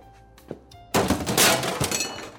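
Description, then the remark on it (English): A lamp shatters with a sudden loud crash, then broken pieces scatter and clatter for over a second before trailing off. A faint thump comes just before the break. “The shattering of the lamp, coupled with his wife's demand for an immediate divorce, shrieked at the top of her lungs with the straw that broke Charlie Denny's back.”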